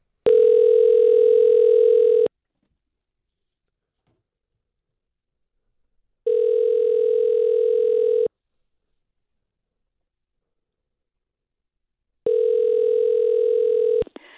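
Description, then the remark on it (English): A loud, steady telephone tone sounds in three long bursts of about two seconds each, separated by evenly spaced silent pauses, with no voices, as a call is placed to a contest grand prize winner's phone number. “So we have our phone number for our grand prize winner. So let's give this a whirl and see what happens.”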